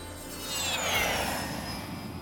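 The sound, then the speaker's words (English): A private jet plane roars past, flying south from New York, its broad rushing noise swelling to a peak and easing off, with a high turbine whine sliding in pitch as it flies by. “Luckily, her private jet was gassed up and ready.”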